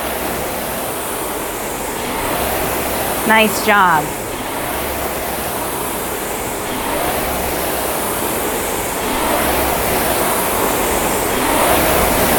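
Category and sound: machine, rowing machine flywheel whirring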